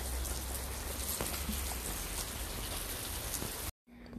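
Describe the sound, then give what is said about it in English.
Steady rain pours down outside a house, a dense continuous hiss with scattered drops tapping on a surface, fairly loud, cutting off abruptly near the end before briefly resuming. “So thank you for sitting along with me while it's raining at my house, while I'm going through a lot of emotions.”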